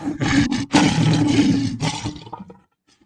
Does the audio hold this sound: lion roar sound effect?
yes